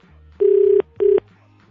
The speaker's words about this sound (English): Answer the phone. Answer the phone.